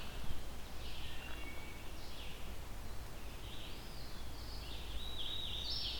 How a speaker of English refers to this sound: It's a loud bird, so it may not be all that close to me. Very songful though. This is it's been non-stop since I got here.